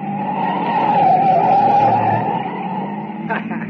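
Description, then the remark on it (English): A loud, sustained tire skid screeches for several seconds as a light car going about 70 swings hard through a right turn, almost going over, with engine rumble underneath and a brief voice near the end. “Baby, look at her take that right turn, She almost went over.”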